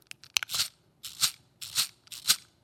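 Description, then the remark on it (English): A mechanical calculating machine's crank is turned six times in a steady rhythm for a multiplication, each turn a ratcheting whir, preceded by a few quick clicks. No one speaks. “Turn the crank 6 times.”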